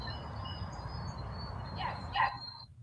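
Birds chirp faintly over a steady outdoor hum at a zoo, with a thin high trill running throughout and a couple of louder calls near the end.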